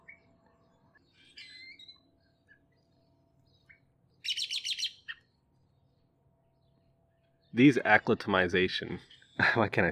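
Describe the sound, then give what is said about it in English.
Starlings chirp outdoors: faint scattered calls at first, then a quick burst of high chirps, followed by louder, raspy chattering that swells near the end. “but I just want to mention some interesting facts while I'm sitting here looking at them.”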